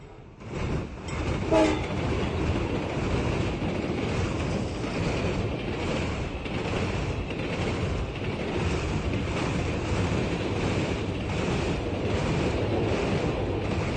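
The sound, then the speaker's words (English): A train rumbles past on a railway line that comes around a curve on a cliff high above a small back garden, loud and steady for the whole stretch, with a brief horn-like tone near the start and a thin, sustained high whine over the heavy rolling noise. “High above her small back garden, a railway line comes around a curve on a cliff.”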